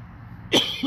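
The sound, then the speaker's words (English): A single sharp cough breaks a quiet background, followed moments later by a short, throaty vocal rasp. “You better drink something. You're coughing.”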